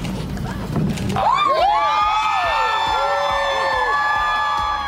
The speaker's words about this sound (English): Hear all those cheers because that was Tennessee State Representative Justin Jones in April being reinstated to the Tennessee House after being expelled.